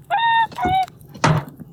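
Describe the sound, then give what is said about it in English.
Two nasal goose honks in quick succession from two geese inside a box, followed by a single solid wooden thud as the box lid is shut, fairly loud. “Okay, close it up.”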